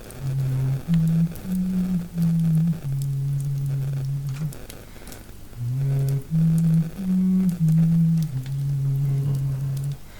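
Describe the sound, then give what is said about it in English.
Someone imitates the humming of a woman who sits downstairs humming to herself: a low, wordless tune of a few stepped notes ending on a long held tone, sung twice over a faint steady hiss. “And just humming to herself.”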